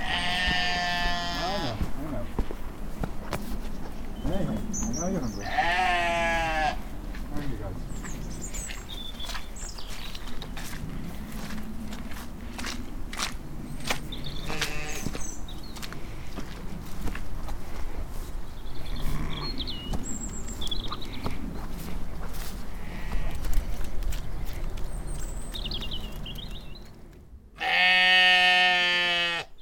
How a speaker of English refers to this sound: in this recording, we're in the barn, in Caro's barn, where she keeps her sheep and her goats